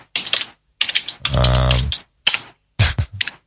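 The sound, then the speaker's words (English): Crisp computer keyboard typing comes in several quick bursts of clattering keystrokes with short pauses between, and a brief low hum-like voice sounds in the middle. “I love it when you're typing away there.”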